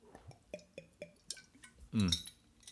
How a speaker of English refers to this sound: Let me have a sip of this water, because I'm actually getting thirsty.